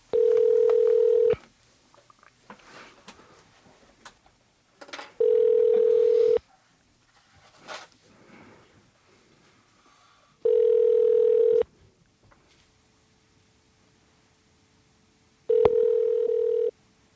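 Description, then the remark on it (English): Loud, steady telephone tones from a call being placed to the phone in a voice booth sound in four evenly spaced bursts, each about a second long, with faint clicks and quiet gaps between them; no one speaks. “If it's possible, just patch us through to the phone in the voice booth.”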